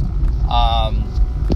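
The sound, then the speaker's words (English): Steady low road rumble fills a car interior as it drives along to a conference, constant, with a brief higher tonal sound rising over the drone midway. “So right now, while I'm driving to work, I'm not actually going to work.”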